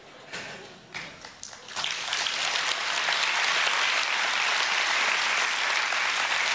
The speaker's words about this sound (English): I'll take that hand clap for the Lord, because without him, we're nothing.